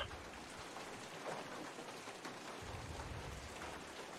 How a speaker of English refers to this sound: Why are we all standing out in the rain?